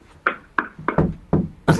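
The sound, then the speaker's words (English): Someone bangs on the floor: six heavy, dull thumps in a fairly steady beat, with two landing close together midway, each loud against a quiet background with no talking. “Now you bang on the floor. You bang on the ceiling.”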